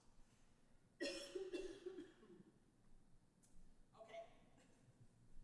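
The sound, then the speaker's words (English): A single loud cough, made deliberately by a speaker as a demonstration, bursts out, followed by a brief throaty rasp, then quieter vocal sounds and faint background murmur. “And I'm going to cough.”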